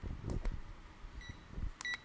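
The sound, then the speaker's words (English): A couple of short, high electronic timer beeps as a timer is being turned on, fairly faint, sounding over low rumbling and handling noises with no talking. “No, it's the beeping. The beeping.”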